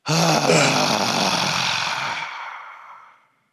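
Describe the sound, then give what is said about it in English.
A long, forceful open-mouthed lion's breath exhale in a breathing exercise, after filling the belly through the nose: a breathy roaring rush of air that starts loud and tapers off over about three seconds, with no talking over it. “And then let it go with a big lion roar audible sound.”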